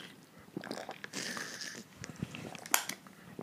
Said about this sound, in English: hold on, let me take a sip.